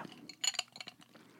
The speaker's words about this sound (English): I apologize for the random sips of coffee, but this is a one-woman show, and in order for me to be able to talk for the amount of time that I talk each episode, I need to take a sip of my drink.